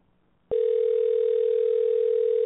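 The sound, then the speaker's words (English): After a brief moment of quiet, the ringing tone of an outgoing phone call to a friend starts abruptly and holds as one steady, unbroken electronic hum, fairly loud, with no voices. “Let's see if she pick up.”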